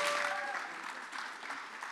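An audience claps steadily for a couple of seconds, a dense, even wash of many hands with no pause, heard at a moderate distance as in a hall.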